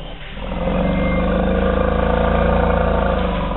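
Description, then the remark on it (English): A deep, steady rumble of elephants in an African forest in the Republic of the Congo, recorded by Cornell's Elephant Listening Project, builds within the first second and then holds, a low, throbbing growl with a faint pulsing texture and no voices. “So for the first time ever, you can be anywhere in the world and listen to elephants rumbling out loud in African forests.”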